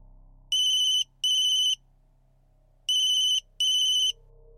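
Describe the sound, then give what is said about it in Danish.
A telephone rings in two double bursts, each a pair of short electronic trills, loud against a low steady hum, with a pause between the pairs; an 8-year-old daughter is calling her mother. “Faktisk har den 8-årige datter på et kvarter forsøgt at ringe til sin mor hele 7 gange.”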